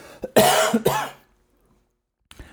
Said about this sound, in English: I have a cough. Here it comes.